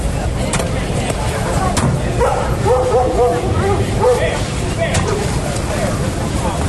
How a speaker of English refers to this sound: Someone had even brought a dog.